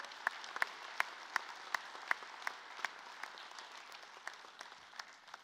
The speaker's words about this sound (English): And so remember what we do when God does something really great? Let's applause and give God all the glory.